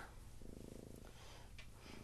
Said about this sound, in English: That cat of yours is so goddamn loud.